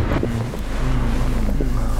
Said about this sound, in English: Why is he honking?